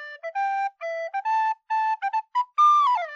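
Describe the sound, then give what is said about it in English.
A short, bright tune on a gnome flute plays alone, a quick string of clear, separated notes that ends on a held higher note sliding downward. “I heard you included the gnome flute in your guessing game today”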